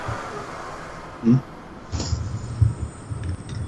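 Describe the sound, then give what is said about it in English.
A low, steady rumble of New York City traffic with trucks and buses rolling by, broken by a few dull thumps and swells in the drone. “You guys hear that New York traffic? Is that what that is? Yeah, it's like, I don't know, man. It's like trucks and buses driving by.”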